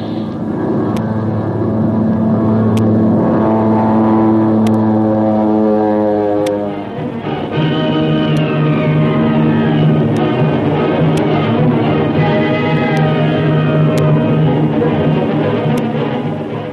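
A loud, continuous engine roar of a stolen Nazi warplane diving faster and faster toward the sea to escape machine-gun fire, with a droning, harmonic tone, its pitch sliding and climbing, filling the whole stretch with no voices.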